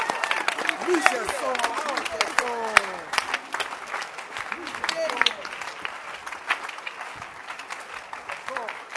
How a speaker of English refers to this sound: Clap your hands if you are happy to be here.